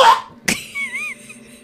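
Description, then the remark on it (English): Two harsh, breathy coughs in quick succession, fairly loud, as a mother coughs up blood, followed by a thin, wavering high tone that fades out. No one speaks. “Oh, no, the mom's coughing up blood?”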